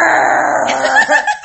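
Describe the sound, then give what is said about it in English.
A person imitates the low, rumbling growl they make in their sleep. It lasts about a second and a half, loud, and breaks into a few rough, choppy bursts at the end. “But instead, I start growling in my sleep.”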